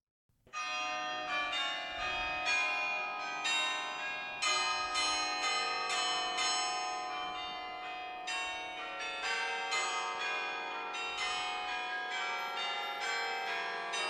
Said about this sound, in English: The church bell version.